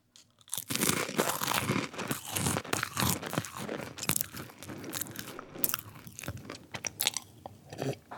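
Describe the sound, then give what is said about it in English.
Loud, close-up crunching of crackers being chewed, with dense irregular bites and crackles filling several seconds, then softening toward the end. No talking. “brought out some crackers.”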